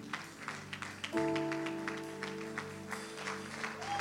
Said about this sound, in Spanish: Dale un aplauso a ese rey maravilloso.